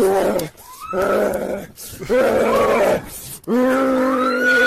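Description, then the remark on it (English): A young man in London imitates an animal's growl while chasing women down dark alleyways: several loud, rough, throaty bursts with brief pauses between them, rising and falling in pitch like a snarling dog. “Because nothing proves you're normal more than chasing women down dark alleyways while making growling noises like a rabid dog.”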